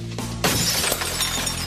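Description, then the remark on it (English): Glass from a hardware store's shop window shatters in a sudden loud crash as someone breaks in, followed by shards tinkling and scattering for about a second over a low rumbling background. “Faith breaks into the hardware store across the street”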